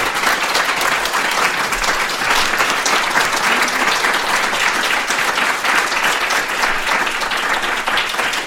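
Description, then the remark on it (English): An audience applauds steadily for two guests, a dense, even patter of many hands clapping at constant loudness for several seconds, with no voices rising above it. “Let's hear a good round of applause for these two.”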